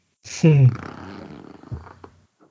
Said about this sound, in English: My chair is squeaky, and also my cat. That was a squeaky chair, just so everybody knows.